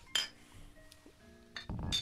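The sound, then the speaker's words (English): Glasses clink together in a toast, a bright clink followed by a longer, louder clatter of glass with a faint ringing tone between them, and no talking. “Oh, good, drink to that. Good call on that one. Cheers.”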